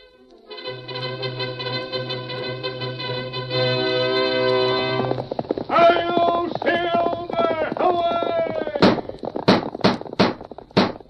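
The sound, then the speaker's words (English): The hooves of the Lone Ranger's galloping horse, Silver, strike in a quick, even run of about five sharp, loud beats near the end, following a stretch of brassy orchestral music. “A fiery horse for the speed of light, a cloud of dust, and a hearty hi-yo, Silver, the Lone Ranger.”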